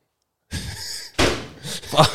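A door creaks open and then swings shut with a firm, solid thud, followed by a short rustle of movement. No clear words are spoken.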